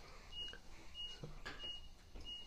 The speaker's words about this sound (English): got a big warehouse, so I got forklifts and trucks backing up.